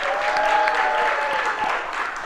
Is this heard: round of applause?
yes